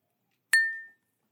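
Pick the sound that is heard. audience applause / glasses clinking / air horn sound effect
glasses clinking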